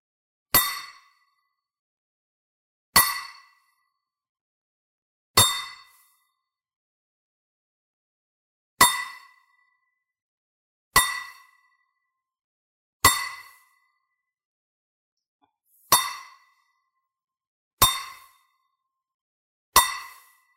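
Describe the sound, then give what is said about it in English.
Nine sharp metallic clinks of nails, as Roman soldiers crucify Jesus at Golgotha, ring out one at a time, each with a short bright decay, spaced a couple of seconds apart in an otherwise quiet setting with no talking. “And then the Romans, the clinking of nails.”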